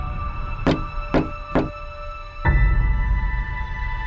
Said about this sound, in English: A knock on the door. I remember a knock on the door around 1:15 time frame. And I got up and I opened the door and there was the sheriff,